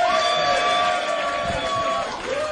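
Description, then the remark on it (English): A crowd bursts into a round of applause at the start of the FBS show, a dense, steady wash of clapping and cheering that holds loud and even for a couple of seconds, with no one speaking over it. “Can I get a round of applause just to start off with, please?”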